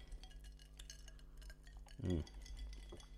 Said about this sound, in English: Well, we've got to Friday. Yes. Let's cheers to that at least. Cheers. Cheers.